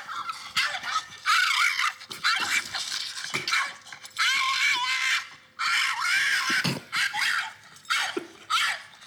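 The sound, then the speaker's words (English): A dog, the pet Napoleon, lets out a string of shrill, raspy, scream-like cries that sound like a dragon, each lasting about a second, coming in rapid bursts with short gaps between them, loud. “I've never heard a dog make that sound.”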